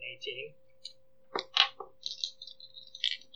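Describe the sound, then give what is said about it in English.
Dice clatter across a table in a short burst of three or four sharp, rattling clicks, then settle. A steady low hum and faint scattered background sounds run underneath. “So you roll for construction, right?”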